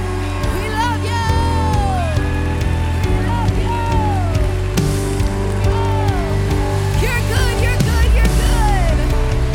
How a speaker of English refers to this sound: So one more time, church, will you just give an applause of thanksgiving to our King?